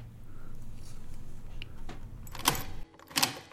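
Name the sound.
door being opened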